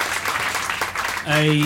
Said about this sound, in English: Wow. I think another round of applause